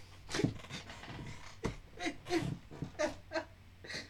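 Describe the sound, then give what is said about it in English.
A dog whimpers and whines in a series of short, high, breathy cries with snuffling breaths between them, moderately loud, with no talking. “I'm not trying to have my head bitten off by your dog.”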